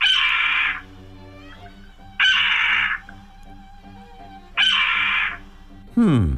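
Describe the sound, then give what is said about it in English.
A Steller's jay (Cyanocitta stelleri) mimics a red-tailed hawk with three loud, harsh, raspy screams, each under a second and spaced about two seconds apart, plus a fourth starting at the end, over a faint steady hum. “Here's a Steller interpretation of a red-tailed hawk.”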